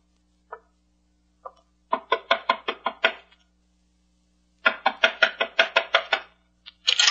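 Knocking on a door: a couple of tentative raps, then two bursts of quick, firm knocks separated by a pause, fairly loud, with no voices.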